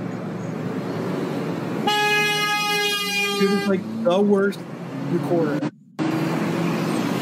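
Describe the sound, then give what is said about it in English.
A steady rush of street traffic with one long, loud car horn blast lasting about two seconds, followed by people talking over the passing cars. “He's more interested in the cars driving by than actually the spaceship.”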